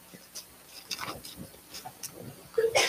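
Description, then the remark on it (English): Faint scattered ticks and rustles, then a single abrupt sneeze bursts out near the end, short and fairly loud. “Bless you.”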